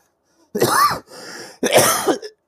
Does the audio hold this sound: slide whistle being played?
no